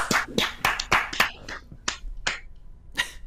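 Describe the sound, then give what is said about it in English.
A quick burst of deliberate, sharp, loud hand claps, about ten of them in an uneven, scattered rhythm. They are bright and crisp, with no talking over them. “Loud clap for the audio listeners.”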